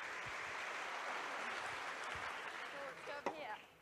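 An audience claps in a steady, dense round of applause lasting a few seconds, with a brief vocal cheer or call rising over it near the end before the clapping thins out.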